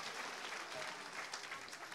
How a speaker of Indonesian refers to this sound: Haleluya, berikan tepuk tangan untuk Tuhan.